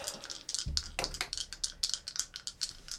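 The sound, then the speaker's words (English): Dice clatter across a hard tabletop in a quick burst of sharp clicks and taps that scatter irregularly and fade out. The dice are rolled for persuasion with advantage during a game. No voices are heard over them. “You see these dice, right?”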